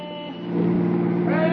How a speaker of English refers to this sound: Well, what's that guy honking about? All right, brother, come on if you're going to pass. Well, come on!